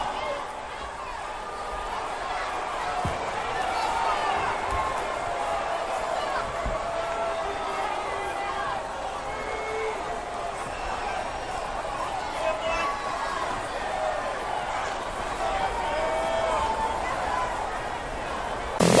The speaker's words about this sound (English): You know, that last little part of the crowd just like indifferent to the whole thing, that went on for like another 45 seconds on the TV, the televised crowd.